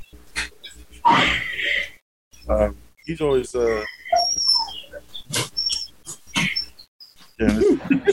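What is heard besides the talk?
dog whimpering and crying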